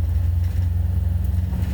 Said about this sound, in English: What kind of car is that? Well, it's a GTR. That's sweet.